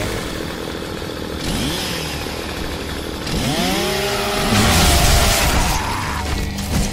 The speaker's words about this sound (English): A chainsaw for a bayonet.